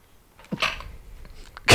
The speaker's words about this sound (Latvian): Gribēju pa klusēm nošķaudīties.